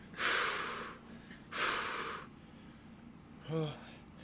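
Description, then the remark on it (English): Creatures breathing heavily: two long, loud, raspy breaths in close succession, each a rush of airy noise lasting nearly a second, followed after a pause by a short voiced grunt-like exhale. “Just breathing heavy.”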